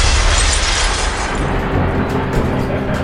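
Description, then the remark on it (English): A spaceship collision crash as the TARDIS collides with something: a loud, roaring burst of noise with deep booming rumble that holds steady for about three seconds, slightly thinning in the upper hiss toward the end. No voices. “That was the moment the TARDIS collided with something.”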